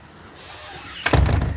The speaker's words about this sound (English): Right, door shut, let's go.